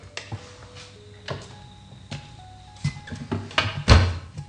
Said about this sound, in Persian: آدریان کوچولو تو این فکرها بود که صدای باز شدن در خونه به گوشش رسید.